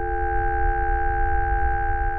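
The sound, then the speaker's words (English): A steady, unbroken ringing tone imitating tinnitus, made of several layered pure pitches that hold constant for two seconds over a faint low rumble, with no voices. “Tinnitus is a condition where some people hear buzzing or ringing sounds in their ears.”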